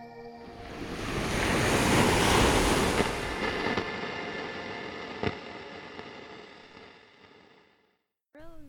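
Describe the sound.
Ocean surf rolls in as a broad, hissing wash that swells to a peak and slowly recedes, then falls quiet before a brief voice cuts in at the very end.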